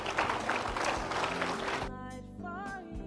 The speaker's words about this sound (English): I'll wait while you clap your hands.